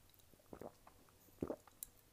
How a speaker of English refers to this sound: As I pause, and I'm pretty sure you heard that, as I pause to take a sip of the lemonade, it's lemonade, it's so good.